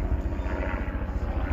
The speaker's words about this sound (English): So, and the fucking helicopter. Are you serious with this shit?